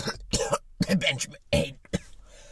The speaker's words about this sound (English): Sorry, I had a bit of a cough there.